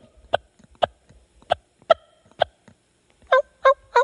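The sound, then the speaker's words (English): Five sharp, clipped turkey hen clucks made on a call, spaced unevenly, then three quicker, more tonal yelping notes. Imitated, not a real bird, with no talking. “But and just to be clear, if you just slow that down, and instead of doing a bunch in a row and just do that same sound, yep, you just call that a cluck.”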